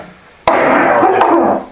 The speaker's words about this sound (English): I'm very sorry, I'm going to have to cough and it's going to be quite loud.